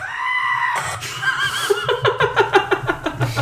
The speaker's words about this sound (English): If you don't know what that is, it's the screaming goat. We'll put it in the show notes. It's hilarious.